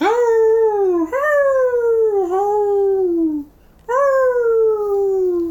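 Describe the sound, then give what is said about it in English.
A voice imitates a werewolf's howl in several long, mournful, falling wails, each sliding down in pitch, with a brief pause before the last one. Loud, no other sounds. “You have to start howling. It's your only hope.”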